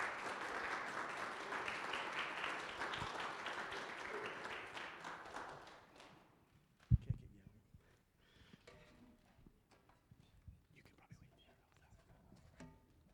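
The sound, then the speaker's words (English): A crowd claps steadily for about six seconds to welcome guests, a dense wash of hands that then stops abruptly, followed by a sharp knock and a few faint rustles and taps in the quiet. “Would you, again, please don't, you don't ever have to clap for me, but when we have guests, can you welcome them, please?”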